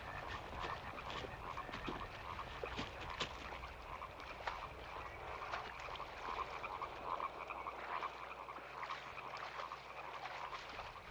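A dense chorus of many frogs croaking continuously over one another at a lake, a steady overlapping din with no pauses.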